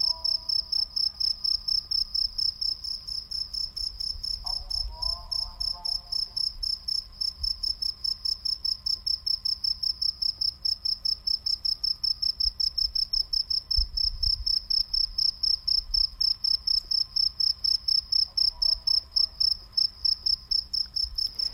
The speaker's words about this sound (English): Listen to the crickets.